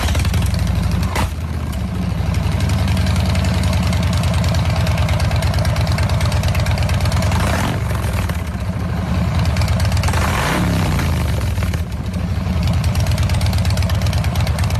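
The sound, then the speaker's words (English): A loud engine idles with a steady low rumble, then revs up in a couple of rising-and-falling bursts before settling back to idle. No one speaks. “We're revving up our engines and ready to go”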